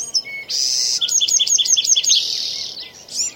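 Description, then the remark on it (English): Birds sing in the middle of the Sequoia National Forest in a bright, rapid series of repeated trilling chirps, layered over a steady high buzzing of insects, with a soft low rumble of outdoor ambience underneath. “This is in the middle of the Sequoia National Forest. And what's that sound, you know? Well, I mean, we've got some birds.”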